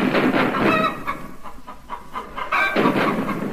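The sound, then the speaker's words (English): German chickens squawk and cackle in agitated bursts over a dense, continuous rumbling din of British artillery shelling, loud, with a brief lull in the middle before the clamor surges back. “Hear that thrilling sound. British artillery shelling German chickens.”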